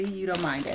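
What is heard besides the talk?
tarot cards being shuffled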